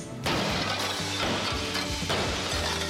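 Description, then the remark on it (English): Glass is smashed with a sudden loud crash, followed by a sustained noisy rattle of breaking and falling fragments and a second impact about two seconds later. No one speaks. “Thermal safe security glass can protect you and your family from flying debris and accidental or intentional glass breakage.”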